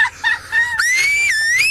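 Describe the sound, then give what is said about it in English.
A loud, shrill human whistle, like a finger whistle, made by a man covering his mouth while his wife mimes it with her fingers in her mouth: a short wavering burst, then a longer piercing tone that rises and dips before cutting off, alone. “could you do a whistle and I'll mime.”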